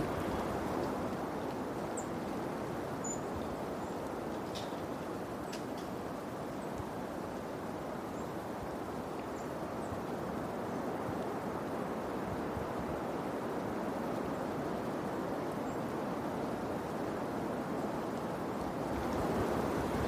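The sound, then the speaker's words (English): Steady, broad rushing of a flowing river fills the scene outdoors in nature in early November, with a few faint, brief bird chirps peeping through now and then. No one speaks. “Just the sound of the birds and the river and nature.”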